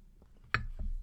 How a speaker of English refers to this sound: let me just take a sip of my coffee here for a second.